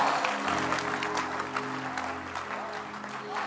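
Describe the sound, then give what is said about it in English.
An audience gives the Lord a clap together in a dense, steady wash of applause that holds at an even loudness throughout, with a low sustained musical tone humming underneath. “Somebody give the Lord a clap and please be seated.”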